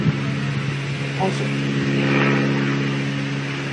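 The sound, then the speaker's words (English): A steady, droning engine hum with strong low tonal bands, like a propeller airplane, from a played video recording of an airplane in the sky with clouds above it, continuous throughout with a slight swell midway. “But it sounds like it's moving. People who have looked at this video said, well, the plane is moving.”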